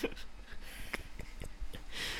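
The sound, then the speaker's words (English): A few quiet, abrupt hiccups caused by laughing pop out at irregular intervals, each a short sharp catch of breath, with faint breathing between them and no talking. “Hiccups. Why? From laughing.”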